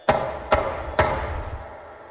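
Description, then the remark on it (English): Three loud, evenly spaced knocks on a door, each a sharp thud with a brief ringing decay, then quiet for the last second. No voices. “The knocking ceased suddenly, although the echoes of it were still in the house.”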